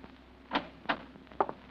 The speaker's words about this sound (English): It's 11 o'clock when you finally get back to 1214A Euclid Avenue and fit Oliver's key in the lock on the front door.